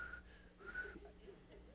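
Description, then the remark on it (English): Someone whistles a short, wavering melody in sustained high notes during a church offertory, heard faintly over a low background hum with no talking. “And then she whistled.”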